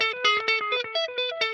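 Rapid, evenly picked single notes on an electric guitar, bright, each repeated note echoing into the next through a shimmering delay and reverb wash, with no voices.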